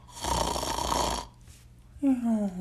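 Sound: voice imitating loud snoring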